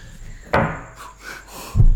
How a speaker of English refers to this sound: I nearly knocked over my drink.